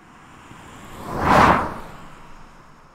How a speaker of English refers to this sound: the car is only in the pattern, especially when you're using the shotgun, it's only in that pattern of the mic for a very brief period